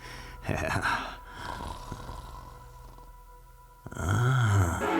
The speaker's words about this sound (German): Ja. Schön weiter schnarchen.